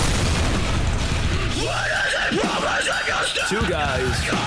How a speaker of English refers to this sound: More explosions than a low-budget porno.